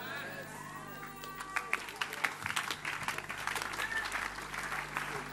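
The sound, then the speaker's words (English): Sparse, half-hearted clapping from a church audience during a sermon, a scattering of irregular claps that starts thin and grows into a modest patter without ever swelling into full applause. “What a weak clapping for such a good message.”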